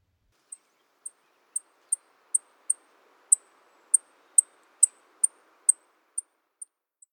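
A series of about fifteen high, thin sip calls from a Savannah sparrow, evenly spaced roughly every half second, building slightly in loudness and then fading, with no talking.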